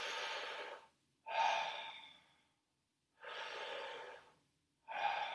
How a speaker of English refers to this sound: Connected breathing, gonna start up now.